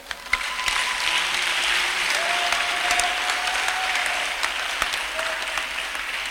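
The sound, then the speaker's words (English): A church audience gives the Lord a clap offering, clapping steadily for several seconds, a dense, continuous wash of applause with a few sharper individual claps standing out and faint sustained tones underneath. “When we pause, then you give the Lord a clap offering.”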